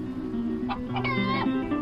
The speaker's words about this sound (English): There's at least a dozen and a half chickens in here. I'm trying to. There's different clucks coming.